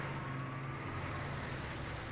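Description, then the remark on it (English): A camouflaged army truck drives past, its heavy engine rumbling steadily, a constant low droning hum with road noise and no speech, holding an even loudness throughout. “Hey look, you can tell it's an army truck because it's camouflaged.”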